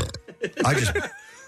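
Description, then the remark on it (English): A loud belch with a croaky, wobbling pitch, preceded by a few short throaty grunts and followed by a faint lingering tone. “It looked as if you completely forgot where you were and just belched.”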